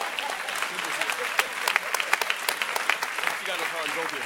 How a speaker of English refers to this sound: Please clap for the bishop.